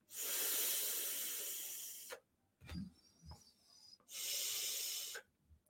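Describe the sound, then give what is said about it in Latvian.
Two long, steady breathy draws of air through a vape pod device with its airflow fully open, each about two seconds, with a soft rustle and faint clicks in the pause between them. “Ir diezgan brīva, jā, priekš poda, teikt pat ļoti brīva priekš poda, jā, uz, uz galīgi vaļā, kad ir.”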